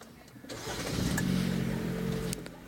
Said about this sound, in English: So I'm going to turn on my car now.